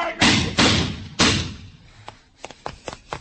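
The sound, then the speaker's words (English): A man gets knocked down by a car driving without lights: three heavy thuds land in quick succession, then a scatter of lighter knocks and clatters as things settle. “Just knocked me down. License? No lights. No license”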